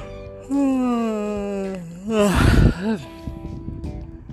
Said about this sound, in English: That was a good old yawn, right?